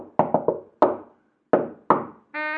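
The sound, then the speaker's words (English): Knocking on a door, loud: three quick raps, a single knock, then two more spaced out, followed by a sustained buzzing tone at the end. No one speaks. “Suddenly, there was a knock at the door.”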